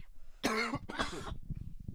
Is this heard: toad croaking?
no